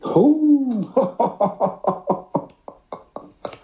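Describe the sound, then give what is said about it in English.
A drawn-out voiced groan gives way to a rapid, rhythmic string of about a dozen short, harsh coughs that gradually weaken, with no talking over them. “I'm still battling this this cough here.”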